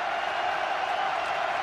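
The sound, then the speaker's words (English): A dense, steady roar of a large basketball arena crowd on its feet cheering at a Rutgers vs Penn State game after a made free throw with 5:15 to go, loud and sustained throughout with no clear peaks or breaks, a broad wash of many voices blended together. “Crowd to their feet again.”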